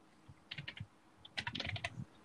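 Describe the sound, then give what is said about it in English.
Quick bursts of laptop keyboard typing, crisp: a short cluster of taps, a brief pause, then a faster, denser run of keystrokes with no voices, as someone tries to spell a word. “Are you typing in your laptop?”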